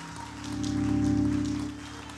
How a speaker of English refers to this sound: Oh, clap your hands again before you're seated and thank him for his word.